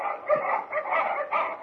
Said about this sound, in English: With their presence revealed by the barking of Batiste Huskies